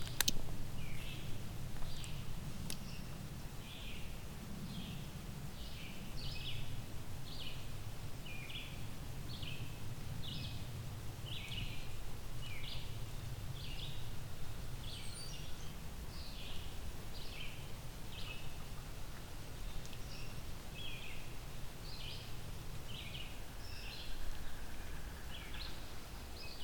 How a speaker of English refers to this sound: Yellow-billed cuckoo.